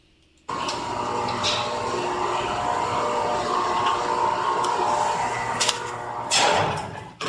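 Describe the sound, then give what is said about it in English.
An elevator runs with a steady, droning motor hum that starts abruptly and holds even, broken by a few faint clicks and a brief louder whoosh near the end. “You can hear the elevator running.”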